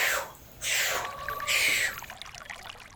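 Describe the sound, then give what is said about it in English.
Two splashes of water a moment apart, each a broad, noisy surge fading into softer sloshing and dribbling, moderately loud, with no voices. “You know how you jump into a pool, kind of go splash, and then start swimming?”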